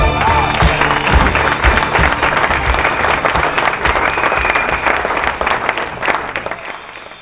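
A crowd claps steadily and loudly, a dense wash of overlapping hand claps with sharp crackling peaks, continuing throughout and tapering slightly at the end.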